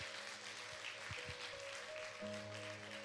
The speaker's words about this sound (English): Would you guys give her one more round of applause?